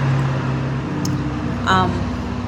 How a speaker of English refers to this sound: All the trucks decided to pass.